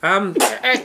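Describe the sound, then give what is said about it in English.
A loud sneeze caused by dust and sand in a hat: a rising voiced intake breaks into a sharp breathy burst, followed by a second smaller gust, all within a second and with no other sounds around it. “Bless you, there's a lot of dust and sand in that hat.”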